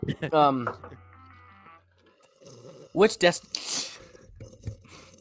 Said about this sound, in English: This is welcome to ELPN ASMR, the beverage slurping.